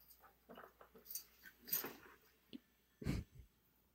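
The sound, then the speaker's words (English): A dog chews on a chair with irregular crunching, scraping bursts, then gives a short, louder low whimper or grunt near the end. There is no talking. “And now, and then he's just chewing on the chair.”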